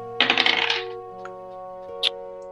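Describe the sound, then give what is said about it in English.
Dice clatter and rattle across a table in a quick burst lasting under a second, rolled for a perception check in a game, followed by a couple of faint, separate clicks as they settle, with a steady low hum behind. “Let's roll some dice about...”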